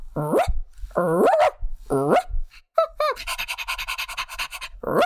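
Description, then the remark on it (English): A person imitates a wire-haired fox terrier like Asta, the dog of the Thin Man films, giving three sharp, whiny barks about a second apart, then switching to quick, rhythmic, breathy panting, fairly loud. “Oh, and if their dog Asta is ever needed, you know, I do a fantastic wire hair fox terrier. Just listen.”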